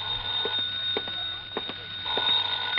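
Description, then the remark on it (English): A telephone rings again with a continuous, shrill bell tone for nearly three seconds, fairly loud, with faint knocks and clatter beneath it and no one speaking. “Then I packed a bag, was about to take off when the phone rang again.”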